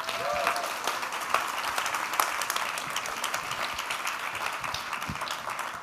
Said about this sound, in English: Ladies and gentlemen, a huge round of applause for the world champion.